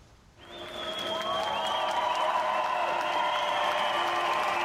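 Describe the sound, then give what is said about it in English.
A large German crowd at the railway station in Munich bursts into sustained cheering and applause, welcoming refugees after a brief quiet moment, the clapping and raised voices holding steady and loud throughout. “In Munich, at the railway station, refugees were welcomed by a welcoming German crowd.”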